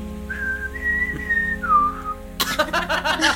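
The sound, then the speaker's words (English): A person whistles a short, clear melodic phrase of a few sustained notes that slide in pitch, moderately loud, as a warning signal that more people are coming, then a sudden burst of louder, noisier sound cuts in. “And if you see more people coming, just whistle, like.”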